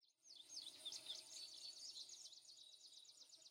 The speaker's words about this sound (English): Right, the delightful country setting, that's what we need, with some bird songs, some insects buzzing.